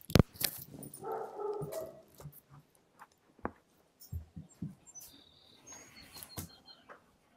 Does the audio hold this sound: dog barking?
yes